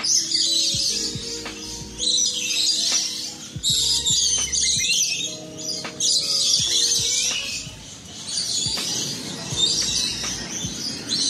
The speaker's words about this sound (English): The small birds with a delightfully cheery chirp. If you listen carefully, you can hear the nearby highway. There's a lot of strategically planted trees to reduce the noise, but these birds don't seem flustered by the modern world.